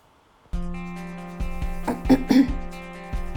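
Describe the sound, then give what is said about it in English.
A person clears their throat into a microphone in a few rough, raspy bursts, over a steady low electrical hum that runs throughout. “I'm hoping I'm covering the microphone, but I don't think I am, when I'm clearing my throat.”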